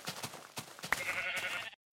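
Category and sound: animal, sheep bleating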